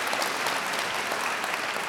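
Steady applause from an audience fills the moment, a dense, continuous patter of many hands clapping at an even loudness, sustained throughout with no voices standing out.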